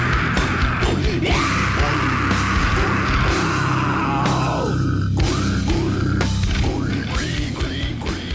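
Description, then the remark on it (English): Harsh, high-pitched pig squeal vocals rip over dense, loud heavy music with pounding low end and crashing cymbals, the screeches bending and sliding across the pummeling mix. “Oh my god, he's gotta stop with the pig squeals, he's so bad at them.”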